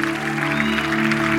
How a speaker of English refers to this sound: You'll hear the staff cheer.